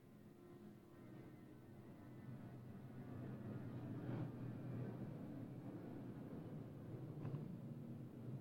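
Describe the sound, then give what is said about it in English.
An airplane passing overhead, a steady low rumbling drone that swells gradually and holds, with no one speaking. “Just waiting for the plane.”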